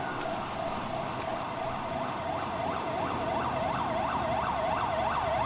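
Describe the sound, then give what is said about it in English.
An EMS ambulance siren wails in a fast, repeating yelp, each rising-and-falling sweep coming about twice a second over a steady background rumble, growing slightly louder as it arrives at a shooting scene by train tracks. “There is EMS.”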